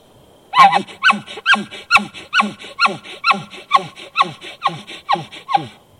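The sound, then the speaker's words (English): An elk gives a rapid series of about eleven chuckling grunts, each a short, harsh, descending call, repeating in a steady rhythm. The calls are loud, with no talking. “Okay, then chuckling and grunting.”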